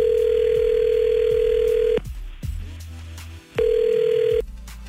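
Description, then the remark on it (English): An outgoing phone call to a woman rings through a handset line: two long steady ringback tones separated by a pause, with faint background clicks and hum in between and no one talking. “So what we're going to do is call her now with you listening on the phone silently.”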